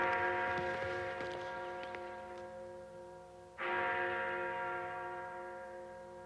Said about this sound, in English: Like the bells.